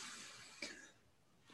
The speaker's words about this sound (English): Oh God, Gesundheit. He's coughing.